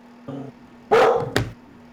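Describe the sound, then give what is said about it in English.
A dog barks: a short low woof, then a louder, sharper bark followed quickly by another, all within about a second, with a faint steady hum underneath. “Sorry, I got a barking dog.”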